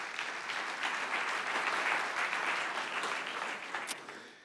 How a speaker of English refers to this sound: I'm glad you clapped and praised God there